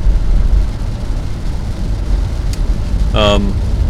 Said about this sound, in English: It is raining hard.